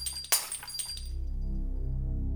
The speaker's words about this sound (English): Still crying, she reluctantly took them outside and smashed each of the bongs.